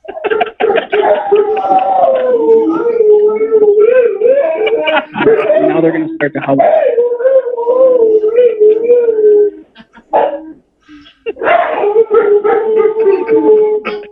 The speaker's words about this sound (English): Dude, that's my dogs. That's Rocky making that weird noise.